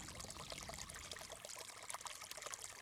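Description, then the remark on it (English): The water of the River Aire runs steadily along an idyllic stretch, babbling and trickling continuously, a broad splashing wash with bright droplet flickers throughout, no voices present. “Looking at the River Aire here, on this idyllic stretch of its journey, what kinds of re-enchantment might occur?”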